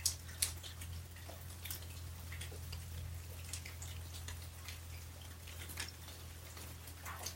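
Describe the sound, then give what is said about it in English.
Rain dripping in soft, irregular taps and patters, scattered unevenly over several seconds, with a low steady hum underneath and no voices. “And this rain eventually flows into the big lake, the Chigami, Tuala rivers, back up again into the sky.”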